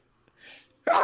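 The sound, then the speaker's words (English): A single loud sneeze: a soft breathy intake of air builds up, then a sudden explosive burst of noise that carries to the end. “Bless you.”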